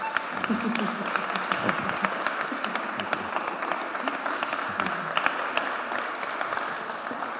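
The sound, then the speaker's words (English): An audience gives a round of applause to honour a guest speaker before he speaks, dense overlapping claps forming a sustained, even wash of sound with scattered sharper claps standing out throughout. “And can we give him a round of applause?”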